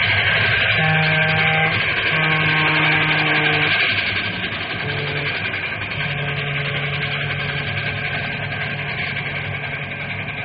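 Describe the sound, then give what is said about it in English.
The Fireball Express train roars past a railroad crossing with wooden cross arms, a loud, dense, continuous rumble with steady droning tones riding on top, loudest for the first four seconds before easing slightly but never fading out. “Hey, look at that monster come roaring.”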